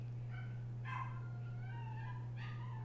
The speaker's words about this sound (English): I don't know if you can hear our neighbor's dog. She's very, very invested in Thor's storyline.